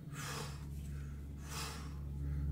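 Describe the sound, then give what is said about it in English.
A voice imitates a large creature's heavy breathing: two long, rasping, snorting exhales, fairly loud, over a low steady hum. “It snorts and chortles. As you can see, snot kind of coming out of its great nose, and it's breathing long and heavy.”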